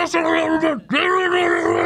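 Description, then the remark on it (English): A voice imitates a screeching game controller with two strained, buzzy vocal bursts, separated by a brief gap. The pitch dips and wavers, and each burst stays loud and harsh throughout. “And the controller was just screeching.”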